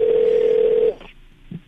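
A steady electronic telephone tone hums over a thin phone line as New Country 103.1 radio hosts place a call, lasting nearly a second, then cuts off with a click, followed by a brief faint blip on the line.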